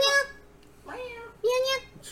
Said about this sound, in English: He's trying to let you know they're hungry. They're hungry, kitties. Oh, chirpy cat. You mean a chirpy cat? He needs to eat.